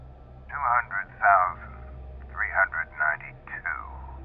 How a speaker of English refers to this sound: It was familiar in an oddly comforting sort of way, and it held my attention to the point I almost didn't hear the faint static sound coming from behind me. Almost.